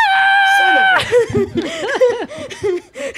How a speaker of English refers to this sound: Yeah, I'm screaming. Screaming.